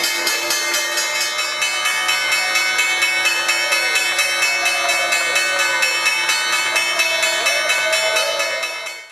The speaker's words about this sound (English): There's the bell, which means I'm sending it to OT with John Ford.